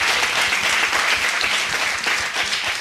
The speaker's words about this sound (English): First off, I want to get a round of applause for you guys for putting this event together.